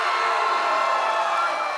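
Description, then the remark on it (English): An audience of Eagles fans cheers, answering a call for Eagles fans before a game against the Kansas City Chiefs, in a steady, loud roar of many voices blending together, holding at the same level without pause for the whole short stretch. “Thank you guys for cheering out.”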